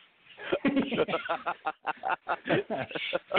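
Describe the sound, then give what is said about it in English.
A chicken clucks and squawks in a rapid, steady run of short bursts, loud, continuing without pause for a few seconds. “just bring back the chicken, please?”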